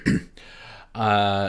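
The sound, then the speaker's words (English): A single short, harsh cough bursts out on air on Revolution Radio at 2 o'clock in the morning, with no cough button used, followed by a breathy pause and then a drawn-out voiced groan. “No cough button. Well, there is, but I didn't use it.”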